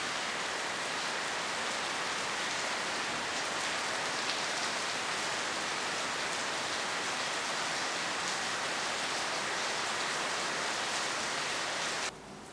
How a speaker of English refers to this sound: Perhaps we meditate a little bit more, as long as it is so heavily raining. I really like the sound of rain in the background for meditation.